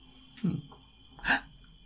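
A sneeze builds and fizzles: a low, sharp gasp, a brief pause, then a brighter, breathy huff that never becomes a full sneeze. Nobody talks.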